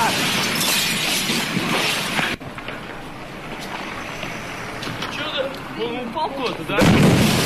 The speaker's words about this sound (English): Did you hear all the glass breaking? Yeah. So here, listen up closely.